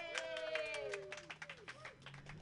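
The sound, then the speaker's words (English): A small audience claps hands in a quick, uneven patter of sharp slaps while high voices cheer and call out over the applause, greeting a performer as he is introduced. “All right, everybody, clap your hands together.”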